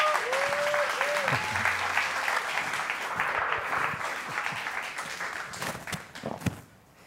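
A crowd breaks into sustained applause, dense and steady, with a brief whooping cheer early on, then thins out toward the end with a few last scattered claps.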